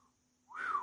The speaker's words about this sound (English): I had to whistle on that one.